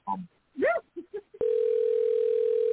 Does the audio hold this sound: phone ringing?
yes